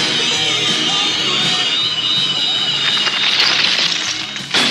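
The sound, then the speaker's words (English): A proton pack sound effect from Ghostbusters: a loud, continuous electronic whine layered with buzzing crackle, breaking into sharper zapping bursts near the end. “It's a proton pack from Ghostbusters.”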